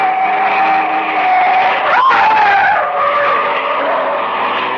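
A car starts up down the street and speeds off, its engine and tires screeching loudly and continuously, with a sharp pitch bend midway as it accelerates. No voices are heard.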